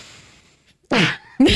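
A person sneezes up close, a sharp, loud burst followed a moment later by a second explosive burst, with no talking around it.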